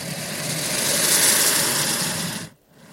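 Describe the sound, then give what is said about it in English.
An animal in a swamp, prodded at with a shotgun microphone, gives a loud snort that runs straight into a long, harsh hiss, rough and rasping like a sputtering engine, lasting about two and a half seconds before cutting off abruptly. “And it responded with a loud snort followed by this hissy noise.”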